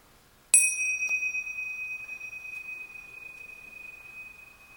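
A single chime is struck once, ringing with a bright high tone and a few shimmering overtones that sustain and slowly fade over several seconds, with no voices.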